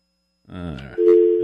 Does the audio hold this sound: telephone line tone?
yes